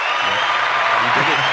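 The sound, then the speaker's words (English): An applause sound effect: a dense, steady burst of canned clapping holds at an even level for about a second and a half, with a voice briefly audible underneath near the end. “Round of applause. Oh wait, is it this one?”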